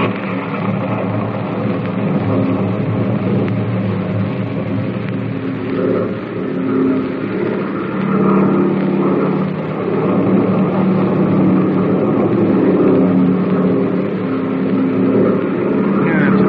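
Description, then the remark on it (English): Airplane engines revving for takeoff: a loud, steady roar with a low droning hum that swells slightly in the second half and holds for the whole stretch, with no voices. “They take off, all right.”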